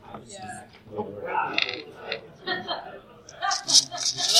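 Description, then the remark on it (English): Dice rattle and clatter inside a giant Crown Royal cloth sack full of dice in a few quick, bright shakes near the end, following a stretch of muffled voices and light laughter. “has a giant Crown Royal sack full of dice.”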